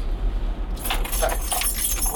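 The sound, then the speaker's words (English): A bunch of keys falls off the side inside a car driving to Portsmouth and jangles with bright metallic clinks, a cluster of rattling hits over about a second and a half, over the car's steady low engine rumble. “that was Richie's keys falling off the side”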